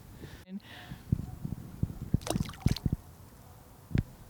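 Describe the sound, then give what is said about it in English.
A waterproof hydrophone microphone is thrown into water, followed by muffled underwater sloshing: a series of soft thumps and a cluster of bubbly, splashy bursts, then a final gurgle as things settle. “I've got this microphone called a hydrophone, which is waterproof, and you can put into the water and just see what you can hear.”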